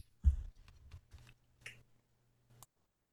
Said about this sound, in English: I'm putting a new battery in that, actually.